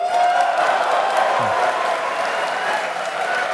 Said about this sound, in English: And there was a big applause.